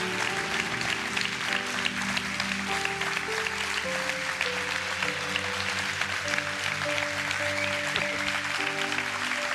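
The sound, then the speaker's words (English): Sustained applause from a large crowd, a dense steady wash of clapping lasting the whole stretch, with a sustained organ-like tone shifting pitch underneath and no voices. “Just receive the applause of the people around you.”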